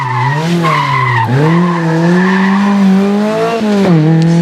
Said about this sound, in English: And I was actually surprised at how good that little Skoda 130 LR is, actually. It's only a 1400 cc pushrod engine.